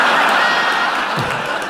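An audience cheers and claps in answer to being asked who came because they saw the show listed in Time Out, a dense, steady wash of crowd noise that stays loud for the whole short stretch, with no clear voices above it.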